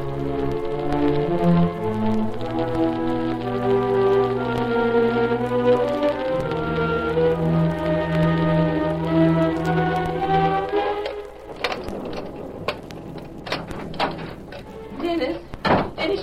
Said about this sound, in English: Children, it's so dark in the storm.